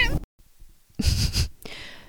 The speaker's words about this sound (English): 对不起，刚刚那是Louis the cat. And he just knocked down the lamp.